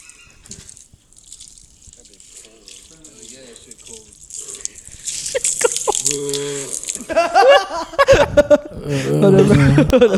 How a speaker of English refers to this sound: So here's a video of me spraying water on him.